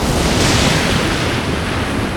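sea waves crashing

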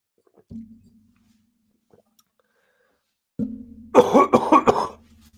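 coughing fit

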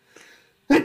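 sneeze

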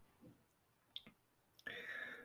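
keyboard clicking

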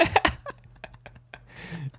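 throat clearing

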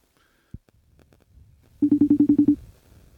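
outgoing telephone call ringing

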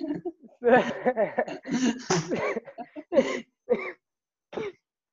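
cough

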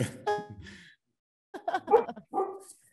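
dog barking

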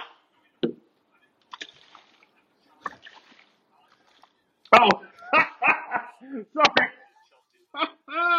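water sloshing

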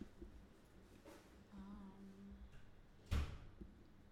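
door being closed

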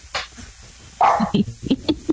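dog barking

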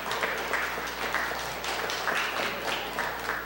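audience round of applause

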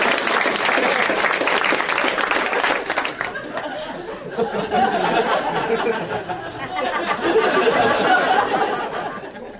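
audience applause

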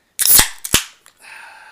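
beer cans cracking open

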